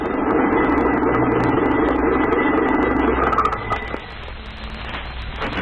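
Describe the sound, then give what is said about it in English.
A car engine idles with a steady, low rumble, then shifts and drops away partway through as the car is stopped in the pine woods off the road, leaving a quieter, rougher hum. No one speaks. “Stop devil wagon, quickly.”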